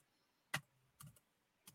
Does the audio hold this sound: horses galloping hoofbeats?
no